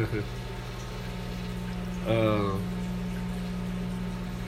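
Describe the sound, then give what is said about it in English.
A microwave oven runs with a steady, low electrical hum that stays constant throughout, interrupted midway by a brief, louder tonal burst lasting about half a second. “And listening to the beautiful sounds of the microwave.”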